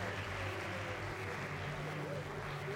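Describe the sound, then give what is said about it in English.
A studio audience applauds and cheers to welcome a band, a dense, even wash of clapping and crowd noise that holds at a constant level for the full few seconds. “…, soak up our applause and cheers.”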